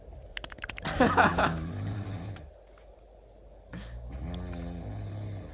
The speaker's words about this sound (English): That's just snoring, though. It's not apnea.